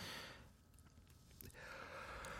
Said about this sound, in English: Right? Sorry, I yawned really bad.